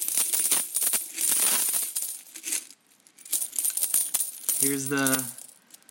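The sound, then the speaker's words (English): A dense, continuous jangle of many metal coins clinking and spilling together as a packed coin container is emptied, bright, with a brief pause before another pour of clattering coins and a short ringing tone near the end. “Oh my gosh, there's so many coins in here.”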